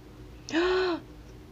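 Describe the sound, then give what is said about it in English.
A single short bird call, a smooth hooting note lasting about half a second, heard clearly against a quiet background with no talking, in the opening of a Focus Features film. “Oh yeah, there's, we got birds. Some birdie noises.”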